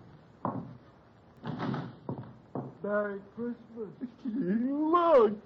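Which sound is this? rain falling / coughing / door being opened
door being opened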